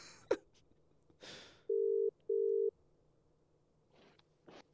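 A phone ringback tone sounds as a steady double burst, two short electronic buzzes in quick succession, clear and fairly loud, framed by brief handling rustles and no talking.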